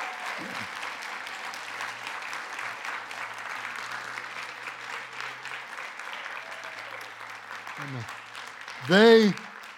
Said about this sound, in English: And what I want to do as they stand, I want you to recognize that they have been recognized by our Foursquare organization for 25 years as ordained ministers. And can you give them a great applause?